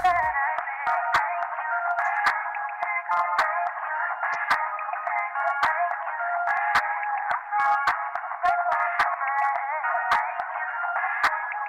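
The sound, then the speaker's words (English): A pop song played down a phone line, thin and tinny with the bass and treble stripped away, running steadily at a moderate level with faint clicks scattered through it and no one talking. “But imagine if it was released 8 years ago and you didn't want to buy it, you didn't want to download it, you just had to phone up a number to listen to it on your phone. This is what it would sound like.”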